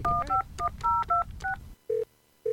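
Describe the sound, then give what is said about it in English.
A rapid run of about seven cell phone keypad dialing tones over a low background hum, followed by two steady ringing tones on the line, as someone places a quick call to a tax preparer. No one speaks. “I need to make a quick phone call.”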